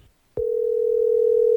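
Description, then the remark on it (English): After a short click, a steady telephone tone starts and holds without a break, loud, like the ring heard on an outgoing call to a man who has not been answering his phone. No one speaks. “Now her boyfriend hasn't been answering the phone, but we're hoping he picks up when we call.”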